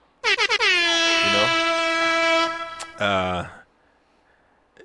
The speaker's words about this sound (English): Let's go. Hit him with the air horns.